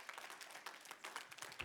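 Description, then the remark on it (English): An audience at a morning church service claps their hands together as a hand clap of praise to the Lord, in a dense, continuous burst of applause, many overlapping claps forming a bright, crackling wash at moderate volume with no talking. “I'll give the Lord a hand clap of praise this morning.”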